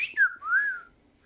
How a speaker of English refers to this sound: Beep whistling.